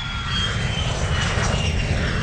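A jet aircraft's engines roar steadily and loudly throughout, a dense continuous rumble with a faint high whine on top. No one speaks.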